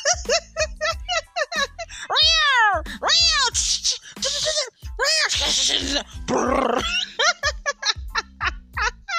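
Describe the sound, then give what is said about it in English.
Cats around a house yowl and screech at each other, with rising, drawn-out wails followed by harsh, noisy hisses and spits. Short bursts of chatter break out around the squabbling. “I can't find out the cat around here is fussing with somebody. And I mean, it's like, they sound just like a damn married couple.”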